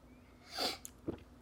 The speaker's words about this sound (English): We're here at the Super Bowl, and our job, quick moment, take a sip.